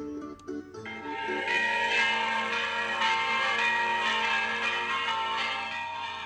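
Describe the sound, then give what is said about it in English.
Cathedral bells in Assisi ring in a continuous peal, their overlapping metallic tones blending into a steady, shimmering wash that holds at an even loudness throughout, with no voices. “It's actually, the bells were like that almost every day.”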